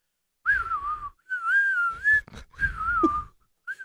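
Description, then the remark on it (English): Continuous whistling in several phrases, a steady mid-high tone that wavers slightly in pitch, with breathy noise between notes as the whistler alternates breathing in and out without stopping. “Did you know you can innie AND outtie whistle?”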